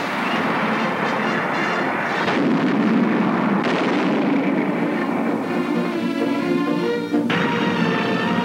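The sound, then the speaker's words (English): Heavy shots from a 75-millimeter cannon mounted on a United States warplane boom out from the sky, a few distinct blasts standing out against a constant loud roar of engine drone and rumbling noise, with no one speaking. “And 75-millimeter cannon firing from the sky can and have sunk a destroyer.”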